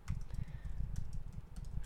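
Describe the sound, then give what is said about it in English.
Rapid typing on a computer keyboard, a dense run of quick clicks and taps with a steady, slightly uneven rhythm throughout, with no talking. “So we need somebody to do the typing.”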